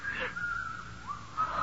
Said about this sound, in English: There's that whistling again.